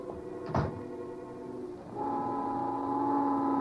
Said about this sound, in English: Just then, the noon whistle blew somewhere in New York